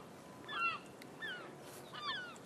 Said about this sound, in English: Getting attacked by the seagulls. Hello! I love seagulls.